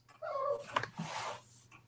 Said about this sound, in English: I've got a little dog that's whining here, so please don't pay attention to that.